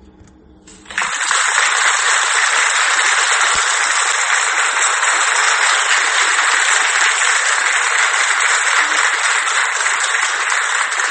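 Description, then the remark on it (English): After about a second, a crowd bursts into applause, a dense, steady wash of clapping that holds at an even, loud level for roughly ten seconds with no voices. “That was a long clap. Is the applause for you or for Frederick Douglass?”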